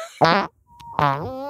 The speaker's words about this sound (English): I am a little gassy tonight, I'll say that. Oh, God, the farts, they're back, baby. Dear God, the farts.